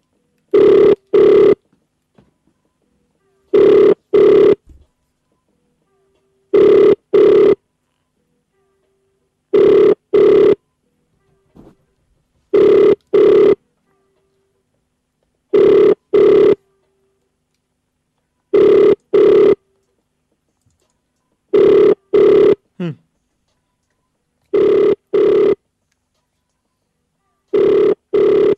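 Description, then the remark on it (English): A telephone rings repeatedly on an outgoing call, loud double-pulse ringback tones recurring about every three seconds with silence between, no one answering. “Oh, it's ringing.”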